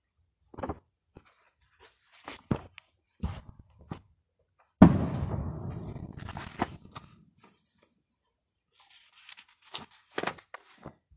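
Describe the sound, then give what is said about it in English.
Fireworks go off: scattered sharp pops and cracks, then one loud boom midway that rumbles away over about two seconds, followed by a few more faint bangs. No one speaks. “Yeah, if y'all are hearing loud booms, it's not a war here. It's not a war zone. It's a fireworks zone.”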